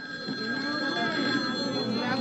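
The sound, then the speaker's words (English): A telephone rings with a steady, continuous electronic tone that holds for a couple of seconds at moderate volume, with faint murmuring voices and background noise beneath it: the first killer's phone call to Blaze. “And you get a kind of a sense of what's going to happen based upon the first killer's phone call to Blaze.”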